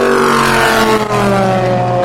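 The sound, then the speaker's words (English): Race car engines roar loudly and continuously, a steady high-pitched mechanical whine with a brief dip midway as the cars go round the track. No one speaks. “We were able to stand here and eat whilst enjoying the cars going round.”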